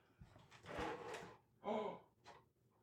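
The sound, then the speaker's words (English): A drawer slides open with a scraping rush, followed by a few quiet shuffling, rummaging noises as things are moved around inside, fairly soft. “Look in that drawer.”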